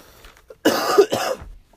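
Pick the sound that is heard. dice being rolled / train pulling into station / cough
cough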